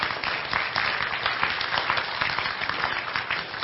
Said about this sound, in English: Yeah, it's okay. You can clap because that's worth celebrating.